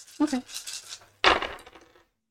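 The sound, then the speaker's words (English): Dice clatter and tumble across a hard surface in two quick bursts, a short rattling roll followed by a louder second roll that settles into silence, fairly loud. “If I had rolled 8 dice, then maybe I wouldn't have got that success.”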